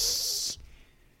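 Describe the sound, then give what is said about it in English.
A voice imitates a cat's hiss, mimicking the cat on the cover of a scary Stephen King movie at a video rental store: one sharp, airy burst of breathy noise lasting about half a second, then cutting off abruptly into quiet. “That it was like the scary looking movie at the video rental store with a cat on it that was going like...”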